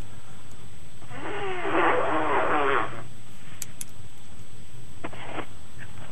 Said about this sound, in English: Hang on, I'm going to blow my nose, I have a cold.